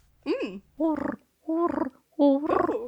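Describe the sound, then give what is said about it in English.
A person imitates a pigeon with four throaty coos in a steady rhythm, each starting as a bending voiced tone and dissolving into a gurgling, rolling rattle, fairly loud and alone. “I can do a pretty convincing pigeon.”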